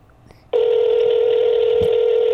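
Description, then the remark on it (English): A phone's outgoing call ringing tone, the second ring: after a brief quiet moment, a steady, loud electronic hum starts and holds unbroken to the end, with no one speaking. “Two rings. I'm betting it will go to voicemail.”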